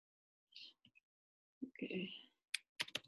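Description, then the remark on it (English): Quiet typing on a computer keyboard as someone types in instructions, a short burst of quick keystroke clicks toward the end, preceded by a few soft taps and a brief rising chirp-like tone. “typing in instructions”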